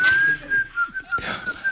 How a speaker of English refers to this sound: Is somebody else in this room whistling? Or is it just no, just me. I'm just whistling.